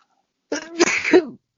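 A single loud sneeze with a sharp intake and a forceful breathy burst, lasting about a second, with no talking around it.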